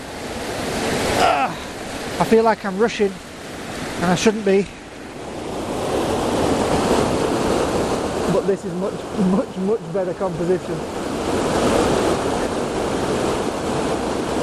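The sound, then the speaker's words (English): A steady roar of a waterfall rushing over rocks, heard from as close as possible, with water flowing over a prominent rock, fills the whole recording, loud and unbroken, while a man speaks over it in short bursts. “I'm as close to this waterfall as I can get.”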